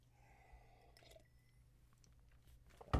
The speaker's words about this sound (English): Ah, okay. I need to sip. This is water, by the way.